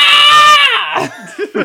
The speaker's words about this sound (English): us literally shrieking in agony with Ted Cruz speeches in the background